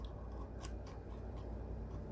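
A handheld hole punch crunches through paper several times in quick succession, repunching holes that were in the wrong spot; short sharp clicks over a quiet low hum, with no one speaking.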